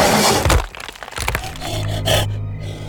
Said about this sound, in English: As quick as he realized what the noise was, the second beast slammed into the blind's face.